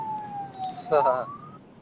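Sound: ambulance siren passing by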